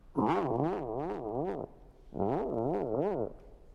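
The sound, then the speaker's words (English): A person vocally imitates a car engine cranking, in an impression of Michael Winslow from the Police Academy movies: a buzzing, voiced sound that wobbles rhythmically up and down in pitch, delivered in two loud bursts separated by a brief pause. “Anyone? Car starting.”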